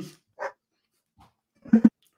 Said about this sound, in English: My dog's crying at the porcelain doll. Yeah, of course it is, because it can sense evil.